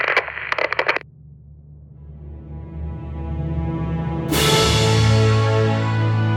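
Instrumental theme music opens with a few quick percussive bursts, then sustained tones swell steadily and break into a louder, brighter full sound near the end. No voices.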